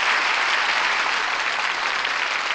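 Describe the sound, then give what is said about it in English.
Steady, dense applause from a sizable audience, many hands clapping at once in a continuous wash of sound that holds at an even, fairly loud level throughout, with no voices. “That applause says it all.”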